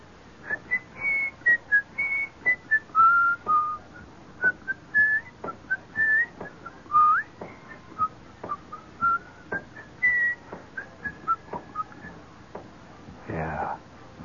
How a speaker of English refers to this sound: And they're out there in that hot sunlight whistling, you know. I used to hate that whistling bit. You ever tried to play a sousaphone for 3 hours in a hot sun, a spanking wind, and then try to whistle?